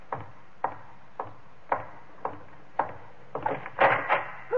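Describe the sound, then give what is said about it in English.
A door is shut and barred: a steady run of evenly spaced wooden thuds, then a louder burst of clattering knocks and bangs at the end, with no voices. “I barred the door on him and went into the high priestess's chamber.”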